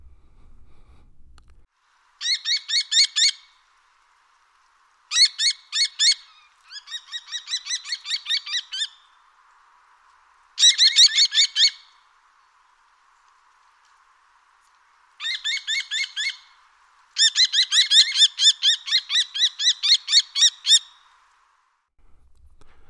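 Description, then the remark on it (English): A common kestrel (Falco tinnunculus) gives loud, rapid bursts of sharp kee-kee-kee notes, high and ringing, in six separate runs with short silent gaps between them; no one speaks. “The call of the kestrel is a loud kee, kee, kee, and it is said that it resembles that of a bell.”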